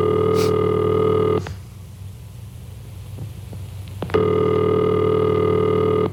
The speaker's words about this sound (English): And this is the ringing signal.